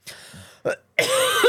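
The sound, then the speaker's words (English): A person clears their throat of a piece of corn husk in three harsh, raspy bursts: a longer one that fades out, a short sharp rasp, then a loud, sustained gravelly clearing. No one speaks. “There was literally like a piece of corn husk right here in my throat.”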